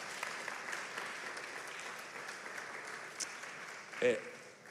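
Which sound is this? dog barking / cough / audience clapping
audience clapping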